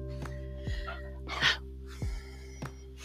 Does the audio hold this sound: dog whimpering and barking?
yes